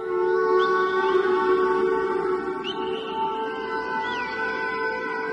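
Whale song with rising, swooping calls drifting over a steady, droning wash of sustained tones in a recorded music track, fairly loud and continuous, with no one talking.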